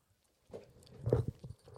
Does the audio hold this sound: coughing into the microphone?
no